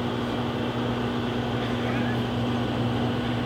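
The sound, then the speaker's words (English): A microwave oven running through a seven-minute cook with a steady, unbroken mechanical hum and a low droning tone underneath, holding the same even loudness throughout. “Does it usually make that sound? The microwave?”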